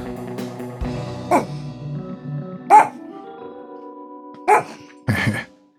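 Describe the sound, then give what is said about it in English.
A dog barks four times in short, sharp bursts spaced unevenly over a few seconds, fairly loud, over a steady low background hum. “Stupid dog.”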